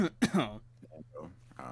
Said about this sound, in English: Oh, yeah, no, I started, like, coughing and choking like a motherfucker, dude. Like, I was barely holding on.